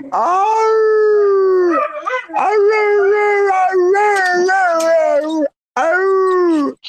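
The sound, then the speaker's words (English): A dog named Winston yawns into a long, loud, wavering howl, its pitch bending up and down across several seconds, broken by a brief gap before a final drawn-out whine. “Oh, he does it. Wait, when Winston yawns and make this.”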